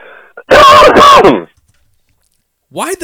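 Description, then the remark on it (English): Two harsh, loud coughs on a voicemail recording erupt right next to the microphone in quick succession, from a caller living in a dry Californian desert area, followed by a brief silence before a voice starts speaking. “Don't cough on your voicemail.”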